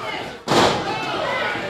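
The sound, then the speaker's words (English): A wrestler is power-slammed onto the mat: one sudden, heavy crash that bursts out loud and decays into a sustained wash of crowd noise and voices. “No, but that power slam might.”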